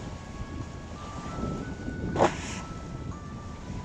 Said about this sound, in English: There goes the motorboat down the river. Get some splashing waves soon. It'll be a nice ambience. Oh. Yeah, here's the waves.